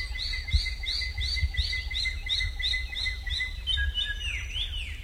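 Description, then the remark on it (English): A Wallacean drongo's sisisia call in Wallacea: a steady run of about a dozen quick, high, bright chirps, ending in a few thinner slurred whistles, over a low constant rumble. “The drongo's sisisia call often comes just before troops of monkeys emerge from the forest to steal corn.”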